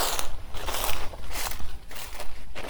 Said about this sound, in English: I'm going to walk through some leaves here. Hang on.